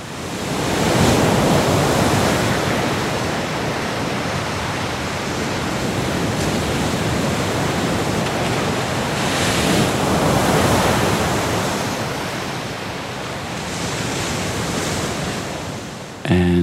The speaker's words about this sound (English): The weather was fine, the wind was coming from the right direction. I had all my equipment with me, and I recorded very extensively the sea there. I took different microphone perspectives, placed the microphone in different positions.